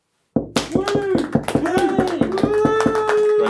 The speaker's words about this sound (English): Okay. 5 seconds of applause for our engineering fellows.